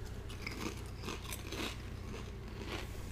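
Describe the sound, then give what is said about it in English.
Crunchy chewing on Pringles potato chips, rotisserie chicken and pizza flavours: a series of crisp, crackly bites repeating every half second or so over a low steady hum, with no talking. “So the rotisserie chicken by itself is a chip.”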